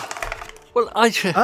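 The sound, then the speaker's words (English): A die rattles and clatters across a hard surface in a quick series of small knocks, then a voice starts speaking as the rolling ends. “I've got a dice in a die. So I'm going to roll it now.”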